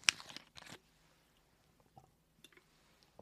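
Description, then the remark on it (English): Someone drinking Le Bleu bottled water, purified and non-carbonated, made in America: a few crackly plastic bursts at the start, then a quiet stretch with soft, scattered gulps and small wet clicks. No one speaks. “I'd like to thank Le Bleu for this delicious, purified, ultra-pure, ozone, oxygenated, BPA-free, non-carbonated, kosher water that is apparently made in America as well.”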